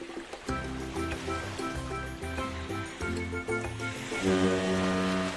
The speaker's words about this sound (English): Foghorn gets me every time.